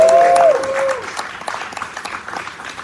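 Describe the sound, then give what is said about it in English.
A crowd claps steadily for the group Until Freedom, a dense crackle of many hands, loud at first and gradually tapering off, with a short tonal cheer ringing out over the start. “Let's give Until Freedom a round of applause.”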